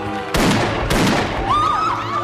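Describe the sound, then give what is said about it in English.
Two loud, sharp gunshot blasts ring out about half a second apart, each with a short echoing tail, followed by a wavering high whistling tone. “But no, because we hear the gunshot.”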